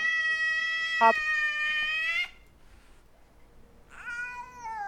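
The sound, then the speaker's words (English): A male cat in Marietta lets out a long, loud, drawn-out meow, falls briefly quiet, then starts another whining meow as someone tries to get it into a box, with no one talking. “The cat's going crazy here.”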